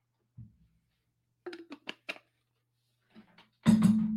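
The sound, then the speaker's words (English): A soft thud and a few quick glassy clinks, then a steady, fairly loud gush of cold brew coffee concentrate pouring into a glass for iced coffee, filling about a third of it, continuing to the end. No one speaks. “We're going to go about a third concentrate here.”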